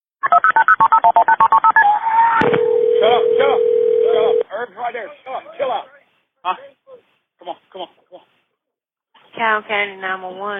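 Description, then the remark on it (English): A 911 emergency call about a boating accident on the Congaree River in Richland County, South Carolina, on May 16, 2020: a rapid run of beeping telephone keypad tones, then one long steady ring tone on the line, followed by people talking in short bursts. “Here is the 911 call.”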